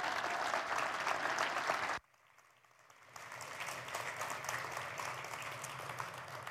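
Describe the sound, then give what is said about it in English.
An audience bursts into loud, dense applause for Jeremiah after a prayer, cutting off abruptly after two seconds, then swelling back up into steady, sustained clapping from many hands. “I'll communicate your applause to him when I see him.”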